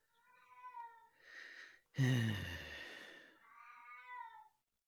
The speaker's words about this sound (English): And oh, there's the cat again. There he goes again. As soon as we start talking about witchcraft, my God.